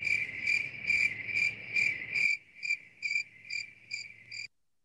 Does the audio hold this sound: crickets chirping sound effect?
yes